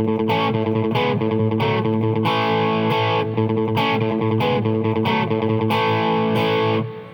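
A distorted electric guitar plays chords in the key of A while sustaining the open fifth string A as a steady low drone, chords changing above it, with rhythmic strummed accents repeating at an even pace; loud and unaccompanied by voices.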